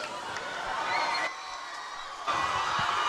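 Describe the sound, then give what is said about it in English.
A student crowd at a night football game between Columbia and CPA cheers in a steady, loud roar of many voices as Columbia's defense urges the noise up. The noise dips for a moment midway, then surges back up. “The defense is trying to get the noise up.”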